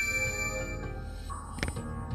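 A phone's incoming call alert, for a call that was then declined, chimes with steady, bell-like tones over a constant low hum, ending in a brief sharp click. No one speaks.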